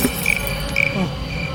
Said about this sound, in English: And it crashed open, and there were flies just swarming, and grasshoppers, and cicadas, and crickets, and they were everywhere. They kept coming.